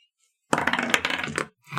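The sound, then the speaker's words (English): Dice rattle and clatter across a hard surface in a dense, loud run of rapid clicks lasting about a second, followed by a brief pause and the start of another clatter, as players roll a history check in a tabletop game; one die rolled three ones in a row. “I'm getting rid of that dice. It has been slated for Melton. It just rolled 3 ones in a row.”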